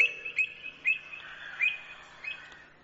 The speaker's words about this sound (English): That was an avocet.